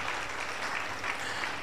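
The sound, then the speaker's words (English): A crowd claps hands together for Jesus in sustained, dense applause, a steady wash of many overlapping claps filling the space without pause for under two seconds. “Clap your hands together for Jesus again.”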